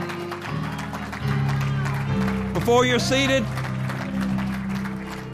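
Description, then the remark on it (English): An audience claps steadily in a dense, continuous patter, giving a hand clap for the word after a prayer, blended with sustained keyboard chords while a man speaks over the applause. “Come on and give him a hand clap for the word.”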